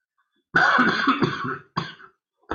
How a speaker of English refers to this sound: And I beg your pardon for my coughing.